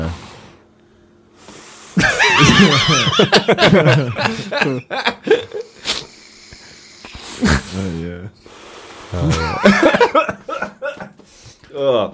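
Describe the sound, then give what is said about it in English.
A loud fit of spluttering coughs after a puff on a vape comes in repeated bursts, broken up by wheezy, laugh-like snorts, with voices chattering around it. “That is quite nice, apart from the coughing bit.”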